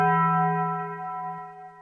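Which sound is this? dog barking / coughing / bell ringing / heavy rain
bell ringing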